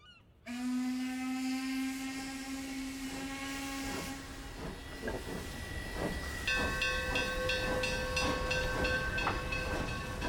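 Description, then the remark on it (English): A steam train's loud, sustained whistle blows over steady hissing and rhythmic chuffing, then a second whistle tone joins while the engine keeps puffing along; the train is Balfour's, running from Pennsylvania Station to Washington in April 1917. No one speaks. “I joined Balfour's train at Pennsylvania Station and traveled with him to Washington.”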